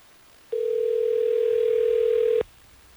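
A single steady telephone tone hums loud and clear for about two seconds, starting and stopping abruptly, with no voices over it, as radio station Hot 101.5 in Tampa Bay places a phone call.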